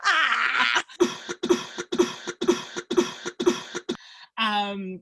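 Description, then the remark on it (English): A cough repeats about six times in quick, evenly spaced bursts, like a loop, loud. A breathy rasp comes before the bursts, and a short voiced sound follows them. “edit out that cough”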